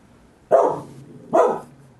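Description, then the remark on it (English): A dog barks twice, two loud woofs spaced under a second apart, with no talking in between. “Although I don't know whose dog is cuter.”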